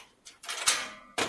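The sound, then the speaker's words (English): Quick rasping zips and a sharp metallic click as the zips and buckles on someone's clothing are undone while they undress, several short bursts in a row with brief pauses and no voices. “A lot of zips and buckles.”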